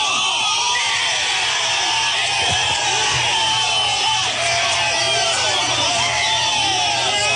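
Several men in a TikTok duet video burst into loud, overlapping yelling and shouting as a man gets out of a car to confront someone, a dense, sustained clamor of raised voices that keeps going without pause for the whole stretch.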